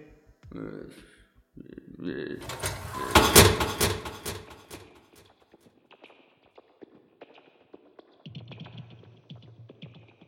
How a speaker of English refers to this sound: Could you please close the door behind me?